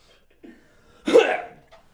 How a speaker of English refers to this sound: I'm coughing.